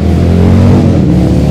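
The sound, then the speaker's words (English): Loud rumble of a convoy of roughly 20 motorcycle engines revving together as they get ready to go onto a parkway, a thick continuous low drone with throaty harmonics that swells slightly midway as the group passes. “It's a whole train of motorcycles!”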